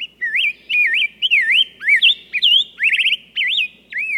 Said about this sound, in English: A bird feeder is a lovely addition to any yard, attracting beauties like this rose-breasted grosbeak.